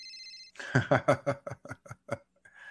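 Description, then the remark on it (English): A short electronic phone ring tone from an incoming call sounds at the start, then gives way to a rapid run of rhythmic, laughter-like vocal bursts before a faint tone returns at the end. “This is another phone call coming in.”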